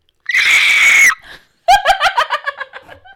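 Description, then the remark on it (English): A person lets out a loud, shrill, sustained screech imitating a pterodactyl for about a second, then after a short pause breaks into choppy bursts of laughter. “I feel like your pterodactyl scream is, like, kind of similar to a dolphin scream.”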